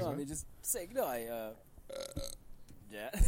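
A loud belch with a wobbling, croaky pitch, drawn out for over a second, followed by shorter guttural burps and gurgly throat sounds.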